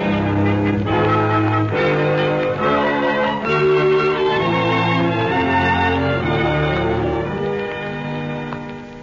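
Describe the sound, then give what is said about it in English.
A doorbell rings on and on at Simon Templar's door on a rainy night in a drama of The Saint, its loud bell-like chimes overlapping in a steady, melodic sequence of ringing tones for several seconds, with no voices. “At least let the doorbell go back to sleep, can't you?”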